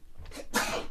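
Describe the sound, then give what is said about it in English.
A single sharp, loud sneeze, with a short breathy intake followed by a bright explosive burst that lingers briefly. No one speaks. “Bless you”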